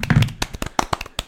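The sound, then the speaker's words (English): A short burst of an applause sound effect: sharp, irregular hand claps crackle for about a second and a half with no talking, the claps landing loosely rather than in a steady rhythm. “Professional sounding applause.”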